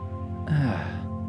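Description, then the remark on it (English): A voice imitates a dog panting with one short, breathy huff of air, clear, over a steady low electrical hum. “You pet the dog and it excitingly starts panting.”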